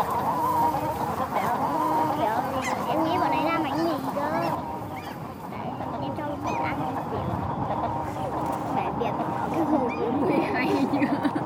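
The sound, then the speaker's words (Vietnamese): Busy, continuous honking and quacking from a crowd of ducks being fed, with harsh overlapping calls throughout and a person talking over the noise. “Cái đuôi cũng hay như này, hai cái lưng con này đấy, con vịt bị vịt ngộ với lại vịt bị đớp nha, đừng đớp.”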